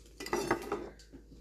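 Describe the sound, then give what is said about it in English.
Dishes and cutlery clatter in a quick burst of clinks and knocks as someone does their part of the dishes, lasting about a second before settling into quieter handling. “My part of dishes”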